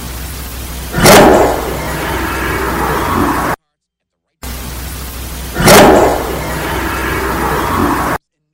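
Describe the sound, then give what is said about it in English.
A loud, rough disembodied growl in a paranormal recording bursts out of steady background hiss and fades over a couple of seconds; the same growl then plays a second time after a short silence. “And a disembodied growl kind of is what I'm hearing.”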